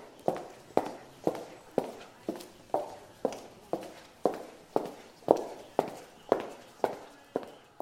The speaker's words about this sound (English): I stood up and walked over to his chair.